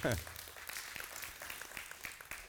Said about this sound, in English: That's worth a hand clap this morning.